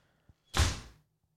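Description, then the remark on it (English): A faint click, then a door thuds shut with a single muffled, heavy impact that fades out over half a second as someone leaves. No one is talking. “You guys can hear him. He's about to leave the door.”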